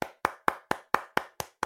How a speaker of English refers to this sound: Round of applause.